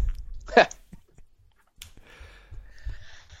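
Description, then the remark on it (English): A single sharp, loud hiccup bursts out, followed by a brief click and then soft mouth noises and quiet, murmured vocal sounds. “I have the hiccups. Forgive me.”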